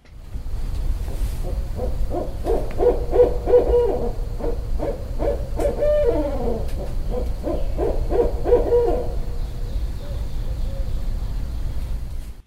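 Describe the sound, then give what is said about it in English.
A barred owl hoots in rhythmic bursts of throaty calls, rising into a cackling, excited exchange midway, over a steady low background rumble like wind or surf; recorded around a house. “It was a barred owl.”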